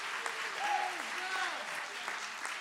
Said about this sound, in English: Would you clap your hands and give the Lord some great praise?